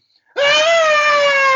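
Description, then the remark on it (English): A single loud, high-pitched scream performed as an old lady finding a ghost, a theatrical shriek that starts suddenly and holds one steady, slightly falling pitch for over a second without a break. “can you do a scream? Because the old lady found the ghost.”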